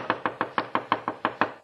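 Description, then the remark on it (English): A rapid series of about nine hard knocks as a bellboy pounds on a wooden door, evenly spaced, with no voices. “If I'd had any sense, I'd have given up right then with the bellboy pounding on the door, with that girl on the phone who could send me to the chair with a word.”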